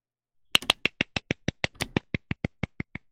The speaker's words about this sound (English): Yeah, that was applause, you fanny. you try and tell me that was an applause.